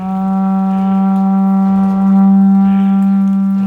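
A horn blown in one long, steady, low-pitched blast lasting several seconds, loud and droning with a rich stack of overtones and a slight swell in volume near the end.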